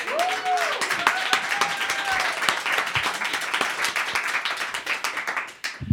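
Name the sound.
audience applause and clapping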